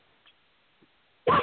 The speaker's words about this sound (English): Sorry about that. My dog barked serious, in the background.